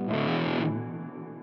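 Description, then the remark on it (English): A heavily overdriven electric guitar chord rings out loud and thick through a Recovery Effects Gallows in the Morning double overdrive and reverb pedal, then cuts to a lingering, washy reverb tail that slowly fades with no one speaking. “Gallows in the Morning is a double overdrive. Ooh. And haunting reverb in one pedal.”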